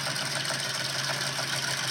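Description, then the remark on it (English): A Ford car engine idles steadily with a continuous, even rumble and faint rhythmic pulsing, moderately loud, with no voices over it. “Tractor? No, it's a car. It's a Ford something.”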